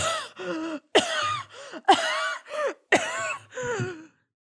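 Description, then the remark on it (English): A woman's fit of harsh, raspy coughing, loud, with about eight strained, throaty bursts coming in quick clusters over a few seconds before it falls silent. “However, you feel the booms of … coughing.”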